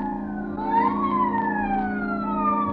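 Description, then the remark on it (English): A police prowl car siren wails in long rising and falling sweeps in Hollywood after midnight, steady and fairly loud, over a constant low engine-like hum with no voices. “The nightclubs close up one by one, but now and then the police whistle and the prowl car siren serenade the sleeper.”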